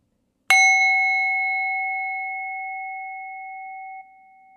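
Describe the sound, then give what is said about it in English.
A single bell is struck once as a cue during a breathing exercise, giving a bright metallic attack followed by a clear, sustained tone that rings out slowly for several seconds in otherwise silent surroundings. “Continue breathing, and I will ask you to notice how many breaths you took in between the two bells.”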